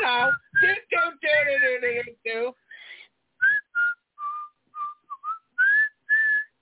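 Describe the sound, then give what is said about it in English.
A person whistles a short, jaunty tune in clear, separate notes, fairly loud, after opening with a brief sung, wordless phrase of the same melody. “The only thing I hate worse than pancakes is whistling.”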